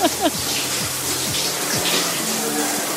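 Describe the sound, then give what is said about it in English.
Shower water runs in a steady hiss, with low muffled tones briefly sliding underneath it. “Gonna let my asshole hang out in the hang out in the shower here, and then you guys can see.”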